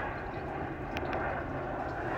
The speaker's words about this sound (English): And we've got another plane coming over.